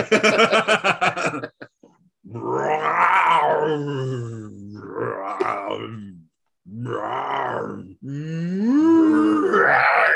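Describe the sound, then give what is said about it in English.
A person imitates a "tiger cow" with several long, drawn-out growling moans, a mix of a roar and a low, cow-like bellow, loud, preceded by a quick burst of rapid throaty pulses. “That was my attempt at a tiger cow.”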